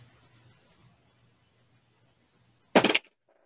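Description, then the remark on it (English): A short, loud clatter of dice tumbling across a table, several rapid knocks bunched together, following a stretch of near silence with a faint low hum. “All right, you're at a six now, so you got to roll a four.”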